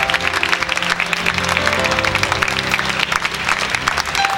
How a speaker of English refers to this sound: Now I want you to just give God a hand clap of praise and say, "Thank you, Lord, for what you've done for me."